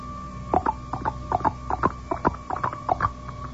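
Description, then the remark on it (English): Quick, crisp taps repeat in a galloping clip-clop pattern, paired knocks in steady rhythm like hooves, fairly loud with a faint background hum and no talking. “How about like this? Like a horse.”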